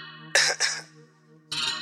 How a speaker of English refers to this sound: Let me clear my throat.